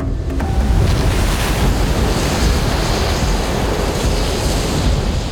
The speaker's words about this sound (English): A whistling through the air cut their conversation short. The clouds began to rumble, and a mighty gush of seawater spilled into the throne room. What started as a trickle soon became a deluge, threatening to swallow them all.